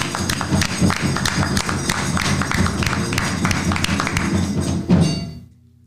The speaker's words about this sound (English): If y'all found some truth in that, give a hand clap of praise.